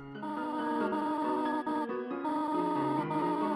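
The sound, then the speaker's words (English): A steady run of synthetic, buzzy blips in a mid-range pitch that shifts up and down in small steps, playing fairly loud with no talking over it: the gibberish text-blip voice of Toriel, a motherly goat character in robes, as her dialogue types out in a box in a video game. “the sound of their voice is pure gibberish, and a box appears and their dialogue types out. But the typeface and the pitch of their voices have a surprising amount of personality.”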